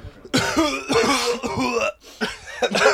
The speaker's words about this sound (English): Mine was a real cough. I've still got water on the lungs.